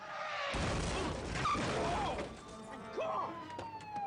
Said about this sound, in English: Oh, that's Kate. Yeah, you can tell. Okay. So that's how Kate enters the plot. She just like crashes into his car.